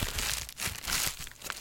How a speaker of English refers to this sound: Whoa, that was bubble wrap. That was bubble wrap right in my face. I thought it was going to go on the microphone, but instead it sprayed me in the eye.